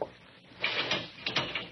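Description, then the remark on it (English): A heavy metal cell door lock clanks and ratchets shut, a short burst of grinding mechanical clicks in two quick bursts, with no voices. “Say, you got me locked in here.”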